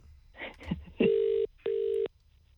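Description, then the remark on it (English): A telephone ringback tone sounds on an outgoing call: two steady buzzing bursts in quick succession, clear and fairly loud, after a brief muffled murmur at the start. “Our producer's just found Richie's number. Let's call him. He probably won't answer.”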